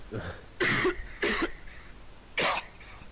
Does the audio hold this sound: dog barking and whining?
no